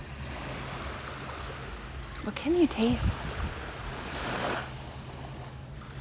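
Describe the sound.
Soft, steady surf rushes in the background, swelling once into a louder wash of water over a sandy shore, while a voice speaks briefly over it.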